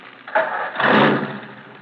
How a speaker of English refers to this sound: Hey, Oscar, sound your horn. Play your radio. Now, start your engine.